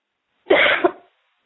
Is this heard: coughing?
yes